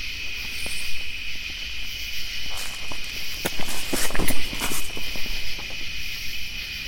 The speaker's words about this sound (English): Did you see or hear? Footstep right in front of us.